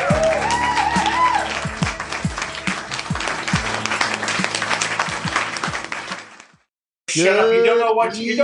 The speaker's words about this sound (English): You don't know what you're applauding. Shut up. millions of dollars worth of technology, and all you're doing is applauding.